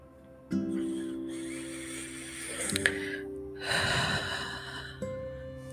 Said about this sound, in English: Also, take a deep breath in and a deep breath out.